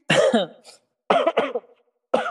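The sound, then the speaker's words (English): A fit of harsh coughing: a long rasping cough, a quick double cough after a short pause, then another starting as the sound cuts off. No one speaks. “I thought we left the cough in last week.”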